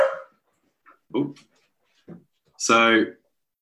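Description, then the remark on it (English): A dog barks, a few short, scattered yelps followed by one louder, drawn-out bark with a whining edge, separated by brief silences. “Oh, I've just got to go and let the dog walker in.”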